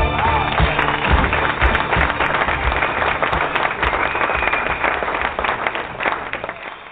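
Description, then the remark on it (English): A crowd applauds loudly and steadily, dense clapping filling the whole stretch with no pauses and no voices over it. “Clap it up, clap it up.”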